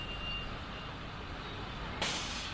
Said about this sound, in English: The bus stops at my stop.